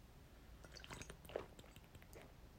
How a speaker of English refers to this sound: Sorry, that's me taking a drink of water.